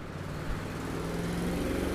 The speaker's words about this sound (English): Oh, all these loud cars, hold on.